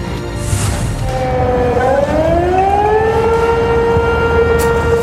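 A loud, sustained flood warning siren sounded by the town of Sumas, south of the Canadian border, during flooding as the Nooksack River tops its banks. It has a steady tone that gradually rises in pitch and holds, droning continuously over a rumbling background with no talking.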